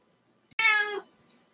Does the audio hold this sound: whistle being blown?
no